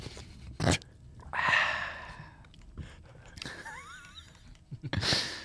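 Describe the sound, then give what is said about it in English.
Someone drinking from a can of Red Bull: a few loud slurps and gulps separated by breathy exhales and a short squeaky sipping sound, with no talking. “I'm just getting a Red Bull in, so I'm energized and can concentrate on the story.”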